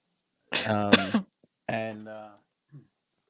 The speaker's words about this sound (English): … coughing her COVID all over the screen.